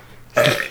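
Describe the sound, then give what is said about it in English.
A single loud burp erupts after a brief quiet moment, a throaty belch lasting under half a second before trailing off. “Just keep burping.”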